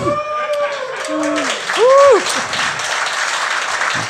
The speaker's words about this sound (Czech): No, to ani není moc potlesku, jako.